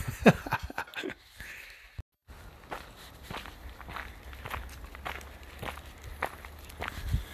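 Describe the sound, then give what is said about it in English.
Steady footsteps of a professional dog walker out walking beagles in Highwoods, Colchester, Essex, UK, at an even pace, fairly crisp, with a brief drop to silence early on and a faint low rumble of open air behind them. “So I'm out on a walk now.”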